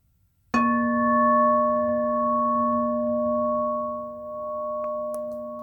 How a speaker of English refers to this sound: I ring the bell 3 times.